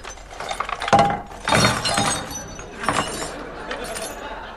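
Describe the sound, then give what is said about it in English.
The contents of a drawer are tipped out onto a table in a clattering spill of small hard objects, metallic jingles and clinks tumbling out in two or three bursts, with scattered rattles settling afterward. “Well, take the drawers out and empty them onto the table.”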